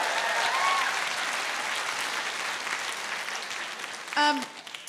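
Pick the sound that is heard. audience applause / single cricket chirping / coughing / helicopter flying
audience applause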